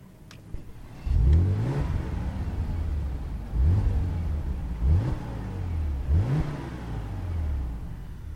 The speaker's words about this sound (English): Now, even without any of the sport settings switched on, just have a listen to this when I restart this V6 3-litre engine.